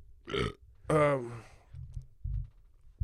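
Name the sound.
burp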